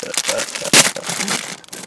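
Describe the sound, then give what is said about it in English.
Crinkling Halloween plastic wrapper being unwrapped from a Kathy K popcorn ball, a steady rustling crackle of irregular crisp snaps with one louder sharp crunch midway, continuous for about two seconds. “Can you hear the unraveling, the crackle?”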